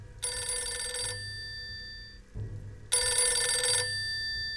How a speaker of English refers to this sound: He ran back into the station as he heard the phone ringing from the studio.